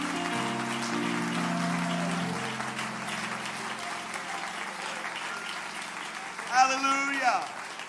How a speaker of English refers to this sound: Give the Lord a good hand clap of praise this morning.